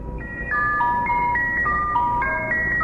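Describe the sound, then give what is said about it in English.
A tinkling music-box melody plays a short repeating phrase of bright, chime-like notes over a steady wash of radio static from a numbers-station transmission, with no voices. “Another one that you would hear on like the … is the Swedish Rhapsody.”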